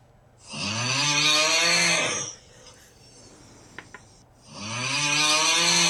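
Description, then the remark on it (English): A man's loud snoring, imitated with the voice: two long rasping, gurgling snores separated by a short pause, with no other talking. “That's someone snoring.”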